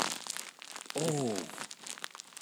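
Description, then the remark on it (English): A bag of rice shaken for a couple of seconds: a steady, crinkly rattle of grains against plastic, like dense rain pattering, with a brief tonal squeak in the middle. “That's a bag of rice. It sounds like sort of rain falling on a plastic roof or something.”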